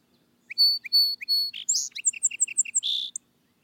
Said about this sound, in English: But to return, the song sparrow, that universal favorite and firstling of spring, comes before April, and its simple strain gladdens all hearts.